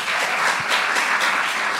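A crowd bursts into steady applause, many hands clapping together in a dense, even wash of sound that stays loud throughout.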